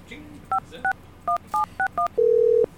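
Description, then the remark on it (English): A telephone number being dialed: six short, evenly spaced touch-tone beeps, each a two-note chirp, followed by one longer, steady, lower-pitched tone held for about half a second. “He's gonna try to call.”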